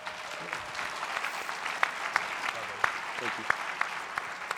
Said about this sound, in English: Awesome. Let's give Taylor a big round of applause.